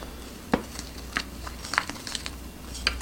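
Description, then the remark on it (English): Stirring a mixture with 2 tablespoons of melted butter in a dish: irregular soft scrapes and light clicks of a utensil against the sides, a handful of brief taps over a quiet background, with no talking. “All right, stir it up.”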